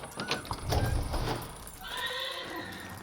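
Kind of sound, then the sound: animal, horse neighing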